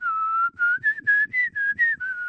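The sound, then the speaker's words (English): Someone whistles a short snake charmer's flute-like tune, a long opening note followed by seven brief, clearly separated notes that rise and fall slightly in pitch, steady and fairly loud with no talking. “How many of you kids know how to play the flute?”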